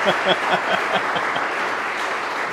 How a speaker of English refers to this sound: You got two claps.